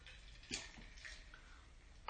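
Someone takes a quiet sip of water, with a few soft, wet clicks and gulps spaced about half a second apart and no talking.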